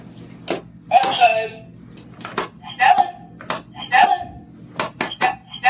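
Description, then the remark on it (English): A puppy named Stella repeatedly steps on recordable talking sound buttons: a rapid, insistent series of sharp clicks, each followed by a short burst of recorded voice. “Here's some sound from the first video she put on Instagram, which shows a very insistent Stella stepping on her buttons.”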